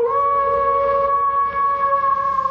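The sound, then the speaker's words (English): A person lets out a long, steady dog-like howl, a sustained wavering tone held for a couple of seconds, loud, with no talking. “I thought that was you howling.”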